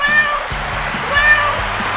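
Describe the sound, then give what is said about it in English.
A cat meows twice, fairly loud, the two calls about a second apart over a low, steady background rumble. “the star of Life with Bucky, her royal buckiness, the world's most amazing cat”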